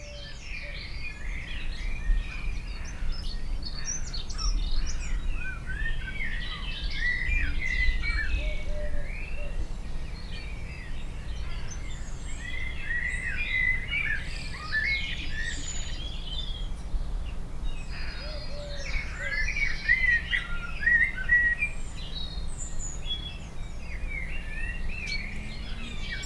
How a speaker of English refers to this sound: I thought I would include 30 seconds of sound from the little woods outside my office window. This recording was made in the early evening as birds were starting to wind down for the night.